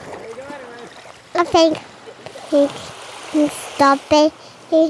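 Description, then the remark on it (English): A steady, hissing wash of ocean waves coming up onto the shore runs throughout at moderate level, with loud, short voiced bursts from a person breaking in repeatedly over the surf. “Oh my, okay, the waves are coming up, so I guess we need to sign off.”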